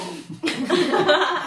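Someone gargles water, a wet, bubbly, throaty rattle that starts after a short pause and runs steadily for about a second, fairly loud and with no talking over it.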